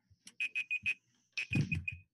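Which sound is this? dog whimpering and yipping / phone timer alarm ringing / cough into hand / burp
phone timer alarm ringing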